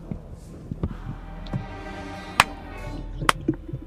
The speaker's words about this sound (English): Oh, slow claps, come on.